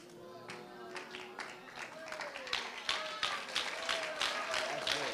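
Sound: audience clapping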